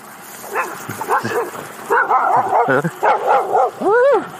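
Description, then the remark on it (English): A large, beefy dog that has gotten off its chain barks in a rapid, uneven series of loud barks and yelps, ending with a longer drawn-out howling bark. “You think you don't have anything left in your legs, and then one of the dogs gets off its chain, and you realize you're not dead yet.”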